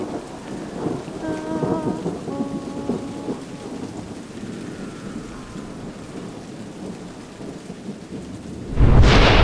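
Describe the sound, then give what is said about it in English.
Steady rain with low, rolling thunder rumbling, then a sudden loud crack of thunder bursts out at the very end as lightning strikes somewhere not far off. “The world flashed bright white as lightning struck somewhere not far off, and thunder cracked and boomed across the sky.”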